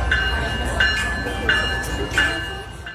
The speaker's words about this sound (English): So this is a CSX 1776 train that they wrapped, and they had this train in support of military families.